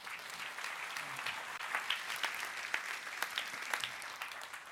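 A crowd claps steadily throughout, a dense, sustained patter of many hands with no voices standing out, moderately loud and fairly close.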